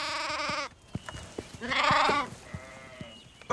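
A sheep bleats loudly in two long, wavering calls with a shorter third bleat, separated by soft clicking and shuffling sounds.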